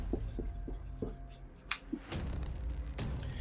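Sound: pen writing on paper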